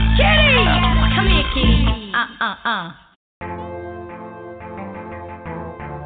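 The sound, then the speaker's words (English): A voice imitates a cat's meow with sliding, whiny tones over a loud beat, then cuts out briefly before the music continues without the meowing. “I love my kitty cat. Meow.”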